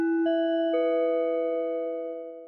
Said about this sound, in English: All right, now they're just messing with me because they stuck in that alarm again, right?